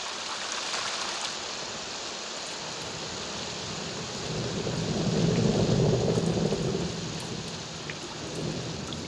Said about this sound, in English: The sound design is great. You get the insects, the rain, you know, maybe just the water dripping after it rains, the sloshing in the mud.